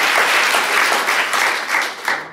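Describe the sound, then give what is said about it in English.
An audience claps together in a steady, dense burst of applause, loud and sustained for the whole stretch with no voices standing out. “Come on, you've got a big hand clap right now because this is what God wants to do with you.”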